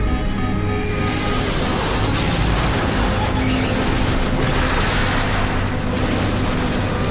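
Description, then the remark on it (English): A loud, sustained explosive roar of a plane crashing after one of its wings was hit fills the whole stretch, a dense rumbling blast with crackling debris layered over deep low-end boom, staying intense without fading. “I tried to keep it from crashing, but it was too late.”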